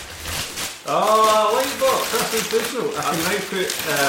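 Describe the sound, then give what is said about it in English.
Crinkly wrapping paper rustles on its own for a moment as a gift is unwrapped, then keeps crackling in irregular bursts underneath a person talking loudly. “No one can hear what you're saying because of the paper.”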